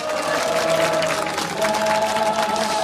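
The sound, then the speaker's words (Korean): A huge outdoor crowd of about 250,000 people at the Gwanghwamun candlelight rally, in front of the TBS broadcasting station, claps steadily and loudly, a dense continuous wash of applause with a faint sustained tone running through it, and no pauses for the whole stretch. “박수 한번 해주시기 바랍니다.”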